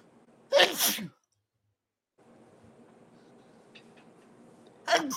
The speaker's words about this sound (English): I got to sneeze. Hang on.